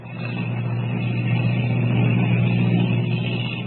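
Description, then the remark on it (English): The engine of a giant airplane in flight drones steadily and loudly, its low hum and rough mechanical roar holding even throughout with no voices or other sounds. “As the giant ship hurtles through the sky, Kent wonders what will be waiting for them.”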